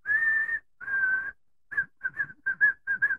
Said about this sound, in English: It's called the white-throated sparrow. Okay, pull this thing up on YouTube. Okay, the white-throated sparrow. Okay, this joker, he sings a song. Okay, I'm sitting out in front of the garage one day, and I hear this.